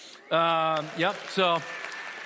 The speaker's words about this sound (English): Just cheering for doing nothing, basically.